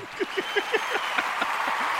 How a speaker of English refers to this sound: So for me, this is an all-time record. Kudos for me. Matter of fact, I'm going to clap for myself.